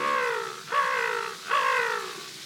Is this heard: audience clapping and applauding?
no